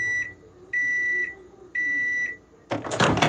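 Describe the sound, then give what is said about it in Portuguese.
A microwave oven beeps three times, with steady, high-pitched tones at an even pace. A short burst of clattering noise follows, with no talking. “Mas o consumo voltou a aumentar com a invenção do micro-ondas e da pipoca produzida dentro dele.”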